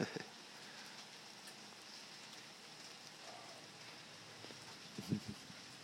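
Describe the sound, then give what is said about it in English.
Steady rain falls in a soft, continuous hiss, with scattered drops pattering and a brief cluster of louder taps near the end. No one speaks. “Well, the rain keeps falling. So let's just listen to it for a while.”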